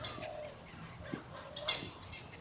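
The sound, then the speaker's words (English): Baby birds chirping in their nest in the Adelaide Hills: faint, thin high-pitched cheeps repeating irregularly in short bursts against a quiet background with no talking. “The baby birds are trapping in their nest.”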